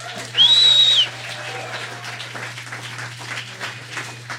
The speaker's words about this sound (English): We go to the exterior of Henry's house the next morning. The tail end of sunrise sparkles against the morning dew. Birds are waking up. It's beautiful in an idyllic way.